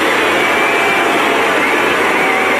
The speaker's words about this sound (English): and then as she approaches her dad and sister, the boos suddenly get even louder. Went over to hug her father and her sister. More boos in the crowd.